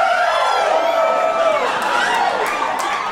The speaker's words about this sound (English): What did that person just say? I don't know. It's a rowdy crowd.